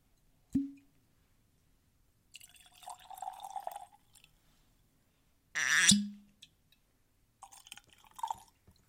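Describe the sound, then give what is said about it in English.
Two rye whiskeys, Russell's Reserve Single Barrel Kentucky Straight Rye (104 proof) and Indiana-distilled Stellum Serpens Single Barrel Rye (116.28 proof), poured into glasses in two short gurgling streams, separated by sharp knocks of glass or bottle, with a louder bright clatter midway and no talking. “So let's get these poured and jump right in.”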